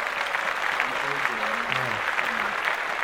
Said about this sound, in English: Clap that shit up.